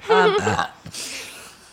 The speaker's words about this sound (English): excuse me. These things happen. Don't worry. Fine. Yeah, no worries. I've been doing it. Our fan base loves the burp. I've been doing it as like low-key as possible the whole night.